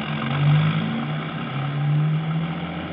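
car driving away

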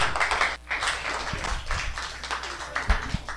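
audience applause

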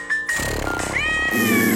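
cat meowing

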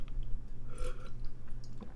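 sipping water

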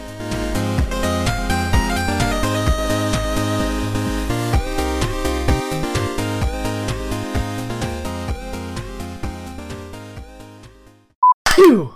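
sneeze

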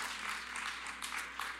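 light polite golf-clap applause

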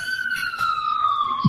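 ambulance siren passing

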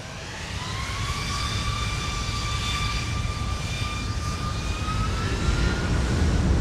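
airplane engine

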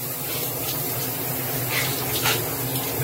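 shower water running

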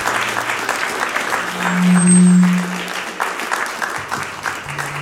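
audience applause welcoming speaker

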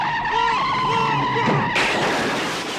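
car tires skidding

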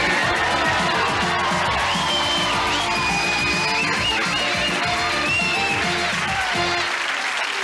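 audience applause and cheering

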